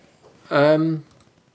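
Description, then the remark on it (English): A single drawn-out cat meow, fairly loud, with a low, complaining tone that dips slightly at the end, standing alone against a quiet background. “The cat's not happy about something.”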